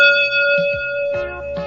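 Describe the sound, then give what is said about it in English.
A single bright chime, the page-turn signal of the read-along storybook Webster Goes to Washington, rings out clearly and hangs in the air with a steady, sustained tone, while a few soft, brief rustles sound underneath. No one speaks. “Don't forget to turn the page every time you hear the chime.”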